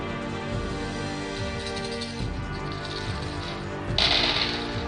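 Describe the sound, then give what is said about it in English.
Ten dice rattle and clatter, a busy stream of small clicks ending in a brighter, louder spill as they tumble out onto a hard surface. “Now I get to roll the 10 dice and try to beat the ego by whatever.”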